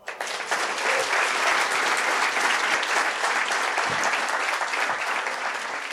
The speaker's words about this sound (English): And yeah, I cheated and stuck some applause on because right now we all deserve it.